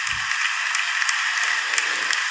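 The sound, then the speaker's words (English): Sustained audience applause in a played news video clip, a dense hiss of many hands clapping at a steady, fairly loud level throughout, with a brief low thump at the start and no voices. “There's so much applause in this.”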